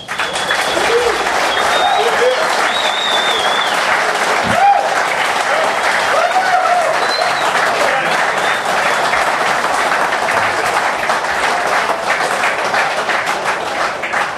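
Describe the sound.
A large audience in Melbourne applauds steadily, a dense, loud wash of clapping that holds evenly for the whole stretch, with a few faint voices and cheers mixed into the noise.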